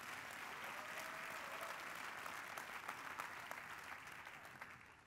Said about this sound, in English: Clap your hands for Jesus Christ.